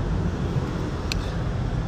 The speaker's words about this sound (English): So you might hear, I don't know, I can't decide if you guys will hear these cars or not